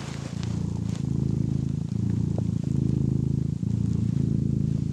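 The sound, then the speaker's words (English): Nigel the cat purrs loudly and steadily right against the microphone, a deep rumbling drone with rhythmic pulses as it breathes in and out, with faint rustling in the background. “Let's see if we can hear Nigel purr.”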